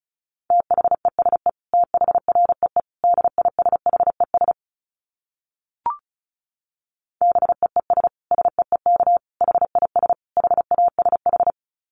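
Fast Morse code at about 35 words per minute: a steady mid-pitched tone keyed into rapid dits and dahs, sent in two bursts separated by a pause with a single brief click.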